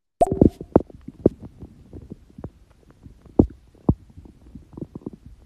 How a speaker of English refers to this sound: That Morse code? I think he's trying to figure out how to use the mic, you know.